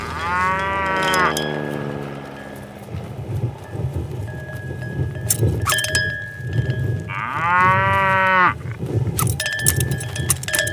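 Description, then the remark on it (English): A voice imitates a panicked cow skydiving for the first time, fearing its parachute won't open until it finally does 40 feet from the ground, letting out two long, wavering moos, one at the start and another near the end, with rumbling and clattering noise filling the gap between them. “And now a cow who goes skydiving for the very first time and thinks his parachute isn't gonna open, but it finally does”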